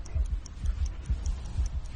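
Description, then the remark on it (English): A rapid, very loud pounding heartbeat, increasing faster and faster, throbs in deep, muffled thumps, with faint high ticking clicks layered over it and no voices. “you can all hear your heartbeat. It's now increasing faster and faster. It's very loud.”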